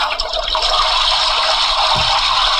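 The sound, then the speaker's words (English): A toilet flushing: a loud, steady rush of water that fills the whole clip, continuous, with a brief low gurgle near the end. “On second thought, I'll flush it down the toilet with my shit.”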